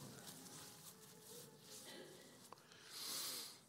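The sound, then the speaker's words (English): A short, airy nasal sniff near the end from a person with a slight sniffle at the change of seasons, following a few seconds of quiet, breathy background noise. No talking. “I got just a bit of a sniffle, which doesn't belong to me.”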